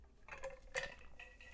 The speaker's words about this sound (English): Sorry, that's me drinking water. Yeah, icy.